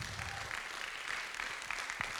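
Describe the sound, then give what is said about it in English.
An audience claps and applauds together, a dense, steady wash of many hands at moderate volume with a few sharper claps standing out, and no one speaking. “Come on, clap like you mean it.”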